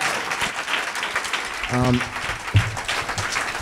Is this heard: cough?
no